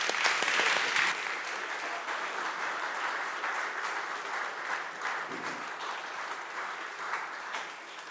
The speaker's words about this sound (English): Let's clap her off the stage.